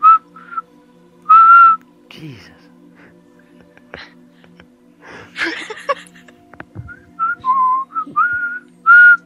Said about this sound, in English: Why is it when you whistle, it sounds so loud? It sounds like, yeah. Sorry, that's why I'm trying to put the mic away from me.